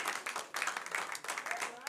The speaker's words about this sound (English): Clap for the Lord Jesus.